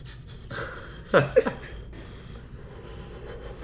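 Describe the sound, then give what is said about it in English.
A voice imitates the heavy, nervous breathing of a man walking up to an older staff member: a few sharp, loud panting breaths clustered close together near the start, then quieter, steady breathing trailing off. “And he's breathing heavy because he doesn't want to tell them.”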